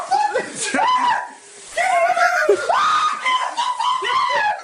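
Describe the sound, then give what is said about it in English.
A person imitates screaming, letting out loud, shrill, wavering shrieks in two long bursts separated by a brief pause, with a faint giggly edge to the voice. “I screamed out, I screamed, look out”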